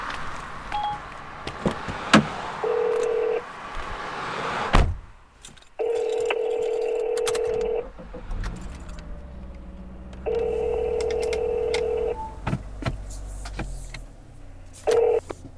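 An outgoing phone call rings through a car speaker: a steady electronic ringback tone repeats in long, evenly spaced pulses, with quiet road rumble and small clicks in between.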